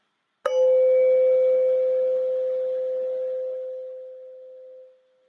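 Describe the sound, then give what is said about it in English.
A single mindfulness bell is struck once at the beginning of a mindfulness practice, giving a sharp attack followed by a steady, clear tone that hums on for several seconds and slowly fades away. No voices are present. “We'll focus on the sound of the bell from the beginning to the end, just as the beginning of the mindfulness practice.”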